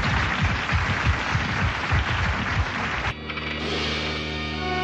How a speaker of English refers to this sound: You can applaud, that's perfect. Sure, go ahead.